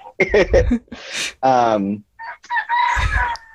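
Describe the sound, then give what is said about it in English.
Roosters crow in several loud, drawn-out bursts, one long harmonic call in the middle with shorter squawking crows around it, clear. “sorry for my roosters”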